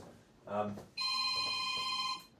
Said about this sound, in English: Who's that? I don't know. Here we go. This is the untimely phone call. Bear with me one moment.